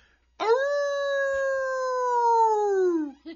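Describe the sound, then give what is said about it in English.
A person lets out one long wolf-like howl, loud, holding a steady pitch for nearly three seconds before it sags and trails off, with no talking around it. “You got to howl at the moon.”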